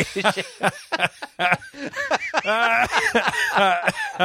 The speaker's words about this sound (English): Wow. That made me cough.